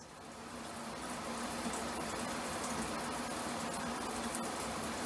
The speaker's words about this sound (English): What did you hear? Did you hear the shower running? Good job.